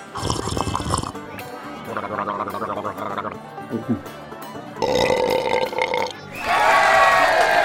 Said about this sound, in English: And a stupendous burp from …. The crowds are loving it.